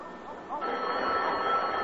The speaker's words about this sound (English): The phone, it's ringing. It's them.